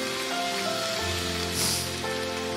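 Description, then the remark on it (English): An audience claps together as worship to God in a dense, steady wash of applause that stays loud throughout, with sustained musical tones humming faintly beneath the clapping. “And when we clap, it's worship.”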